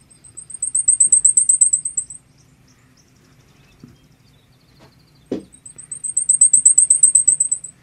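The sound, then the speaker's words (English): A very high, thin blackpoll warbler song: a rapid, even series of sibilant ticking notes that swells then fades, heard twice, with a single soft knock before the second song. “And we've determined that that one is the black pole warbler.”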